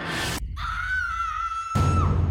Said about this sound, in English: The scream came from the forest, and it was definitely real.